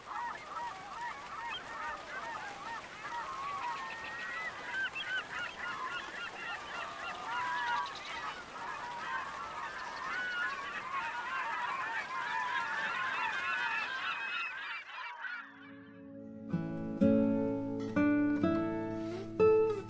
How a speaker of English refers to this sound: Crow of the cock there.